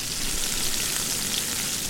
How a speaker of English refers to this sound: And they're just sizzling away.